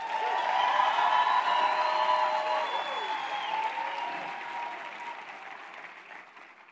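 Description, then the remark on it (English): A church audience bursts into loud, sustained applause for Jesus, mixed with cheers and whoops, holding strong for several seconds before gradually tapering off. “Can we then give Jesus the craziest, loudest round of applause?”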